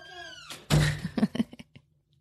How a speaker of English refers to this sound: Okay, shut the door, please. Thank you. See you in a minute.